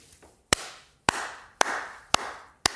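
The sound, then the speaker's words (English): A slow hand clap: five sharp, loud claps spaced evenly about half a second apart, each followed by a brief fading tail, with no voices. “The slow hand clap.”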